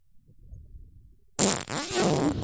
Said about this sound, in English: Stop farting on the mic.